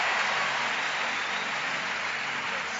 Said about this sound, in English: I like the way you are clapping. You can do it better for the Lord. Celebrate God for your life.